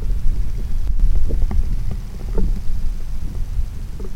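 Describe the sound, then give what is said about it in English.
An underwater hydrothermal vent: a steady, gentle rushing roar heavy in the low end, like a waterfall, with scattered faint clicks and pops throughout and no voices. “Okay, so let's listen to a hydrothermal vent.”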